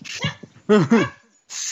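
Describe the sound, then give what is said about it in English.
A dog makes a quick burst of noises: snorty, sneeze-like puffs of air around two short, whiny vocal yelps, with no talking. “even the dog thinks Zeke had a bad day.”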